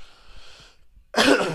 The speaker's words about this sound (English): I'm sorry. I'm like coughing in your guys' ear. I'm really trying to put the microphone away and like cough the other way.